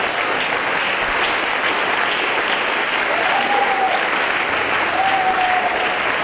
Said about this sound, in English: it's a good place for you to clap your hands.